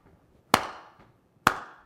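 Two sharp, loud hand claps land about a second apart in a steady beat, each one ringing out briefly, with no voices in between.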